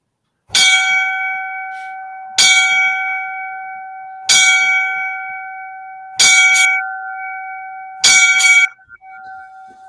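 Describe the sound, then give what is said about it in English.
Five loud, evenly spaced bell strikes, rung for a Los Angeles County firefighter who died in the line of duty at a house fire, ring out about two seconds apart, each with a sharp metallic attack and a long sustained hum that carries between strikes. No one speaks. “Five bells for LA County firefighter that died today at a house fire.”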